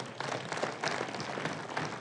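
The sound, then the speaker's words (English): A crowd of hands claps together in a dense, steady burst of applause, a hand clap given in praise of the Lord during a sermon, many overlapping claps forming a continuous bright patter with no voices on top. “Praise God, give the Lord a hand clap right now.”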